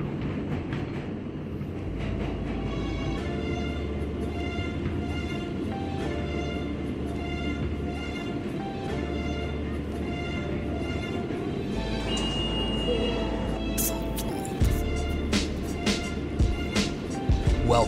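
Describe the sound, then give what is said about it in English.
Steady intro music for Subway Sports Talk with sustained tones and a pulsing low bass line, layered over rumbling train and rail sounds, ending with a few sharp clattering hits; no talking. “Enjoy our intro music.”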